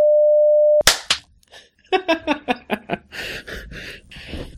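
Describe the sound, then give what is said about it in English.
A steady electronic beep holds for under a second, then two sharp hand claps, made to sync audio recordings, snap out in quick succession, followed by a person talking. “Okay, I'm not sure if there was like some lag there, but to me, I clapped just like a quarter second before you did.”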